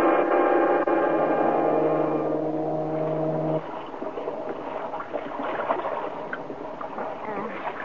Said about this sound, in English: Oh, yeah, a very particular kind. A ferry boat that's going to take us across the bay to Coronado.